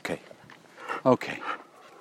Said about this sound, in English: Your dog's a male, is he? Yeah, a male rescue dog.